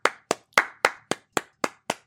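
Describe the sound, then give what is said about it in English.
A single person claps to themselves eight times at a steady, moderately quick pace, each clap sharp with a short decay, and no one speaks. “I realize if someone was sitting here looking at me and see that I'm talking to myself and clapping to myself, I would look slightly mental.”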